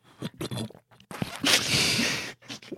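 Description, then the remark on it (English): Wet, noisy slurping right at the microphone: a few short sucking bursts, then one long, loud drawn-out slurp and a couple of quick sips at the end, with no talking. “Slurping on the mic.”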